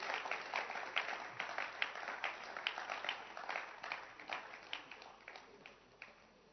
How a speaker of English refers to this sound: Clap your hands.